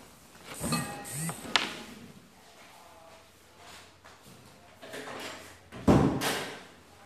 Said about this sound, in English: So if you just give me a second, I'm just going to close my office door.